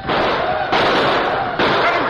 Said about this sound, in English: Indians! Here they come! Open fire on them!